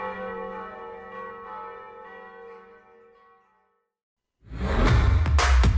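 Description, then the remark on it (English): Resonant church-style bells ring out with rich sustained overtones that slowly fade to silence, followed by a sudden loud rushing burst of noise near the end. “I think a good way to end tonight's episode is to play some bells ringing as we go out.”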